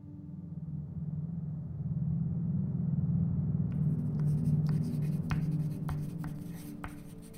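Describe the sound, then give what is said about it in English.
A pen scratches across paper in short, irregular strokes, starting a few seconds in over a steady low hum. The scratching is fairly faint, with brief sharper ticks between strokes. “I had to stop writing for a minute.”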